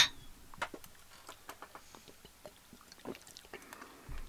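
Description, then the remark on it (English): Beer bottles clink together in a toast, a bright ringing tap at the start followed by scattered light clicks and knocks of glass, fairly quiet, with no talking. “Pop that and... cheers it!”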